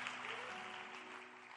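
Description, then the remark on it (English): A crowd claps hands for Jesus in a dense, continuous wash of applause, steady and moderately loud for its short length, with a faint sustained tone humming underneath. “In Jesus' name, please put your hands together for Jesus. Clap your hands.”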